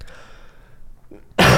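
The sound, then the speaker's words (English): After a quiet stretch with a faint breathy sound, one loud, harsh cough bursts out near the end. No one speaks. “I was coughing.”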